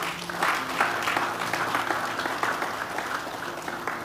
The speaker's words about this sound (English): Let's clap for them.